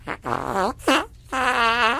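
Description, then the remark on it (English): Loud farting noises in quick succession, buzzy and almost tuneful, the final one long and drawn out, with no talking. “Can you pass gas at will? Fart once for no, twice for yes.”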